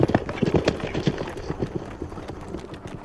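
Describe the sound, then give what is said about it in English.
Several cavalry horses gallop in a charge toward a farmhouse and tobacco barn, a rapid, overlapping drumming of heavy hoofbeats, loud and uneven at first and easing slightly toward the end, with no voices. “It wasn't the pounding hoofbeats that woke up Booth and Harold.”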